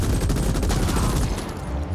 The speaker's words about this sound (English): Guns sound good. Audio of the game's great.